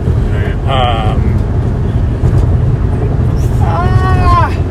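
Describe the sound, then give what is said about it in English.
A steady, loud low rumble of road noise fills the cabin of a car moving at night through a dark, empty area, four hours into a road trip, with brief bursts of voices rising over it near the start and end. “Dying in the back of this car. 4 hours at this point.”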